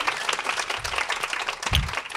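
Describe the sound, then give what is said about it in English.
Steady audience applause for an Emmy award-winning producer, a dense wash of many hands clapping at once, loud and continuous with a couple of brief surges in intensity, no voices standing out. “And let's give it up one more time for the person who has been driving the change in our organization, Emmy award-winning producer,”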